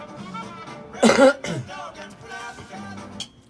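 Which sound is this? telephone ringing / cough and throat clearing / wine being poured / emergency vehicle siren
cough and throat clearing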